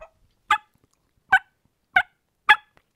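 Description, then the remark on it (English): Four sharp, raspy turkey yelps made on a mouth diaphragm call, evenly spaced about half a second to a second apart, loud with silence between them. “those Georgia boys have been calling turkeys for 90 years, right?”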